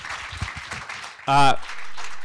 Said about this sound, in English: Can we have an honorary round of applause for Ross Sutherland, who sadly couldn't be here tonight?